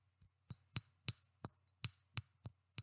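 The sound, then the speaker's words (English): A red stopper clinks against a glass perfume bottle about eight times in an uneven rhythm, each tap short and bright with a brief ringing tone, with no voices. “And opening it up, there it is, the glass bottle with the familiar red stopper.”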